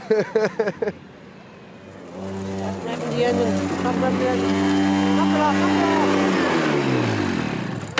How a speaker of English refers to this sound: What are you revving it for?